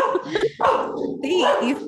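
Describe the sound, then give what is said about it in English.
A dog that has stepped on a bee yelps and whines in a string of loud, high, wavering cries, with one short break before the pained yelping picks up again. “My dog stepped on a bee.”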